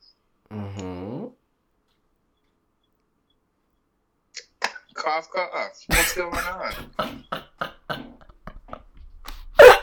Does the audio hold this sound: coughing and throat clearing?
yes